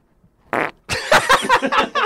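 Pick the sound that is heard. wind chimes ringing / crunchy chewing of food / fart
fart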